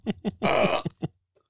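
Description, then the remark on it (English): A loud burp: two short guttural croaks, then a longer rasping belch, and two more quick croaks before it trails off into silence. “sorry, a lot of burps are in me.”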